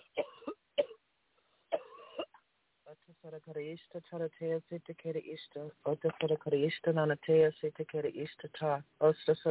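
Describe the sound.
A few short, sharp coughs from a woman near the start, coming in quick bursts with brief pauses during a deliverance prayer, followed by a person speaking or chanting steadily.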